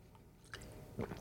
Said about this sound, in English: And I'm just going to, excuse me, let me give me a little drink of water real quick.